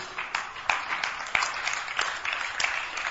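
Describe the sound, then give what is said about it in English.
An audience claps steadily during a prayer service, many hands blending into a dense, continuous patter with a few sharper individual claps standing out, without any voices. “Those who are clapping, you know what you are doing is right.”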